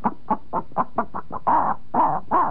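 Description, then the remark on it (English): A voice imitates the cackle a chicken makes when about to lay an egg: seven quick, clipped clucks in a steady rhythm, then three longer, drawn-out squawking calls, fairly loud with no other talking. “There's one sound that a chicken does when he's about to lay an egg.”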